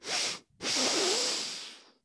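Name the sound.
voice imitating loud sniffing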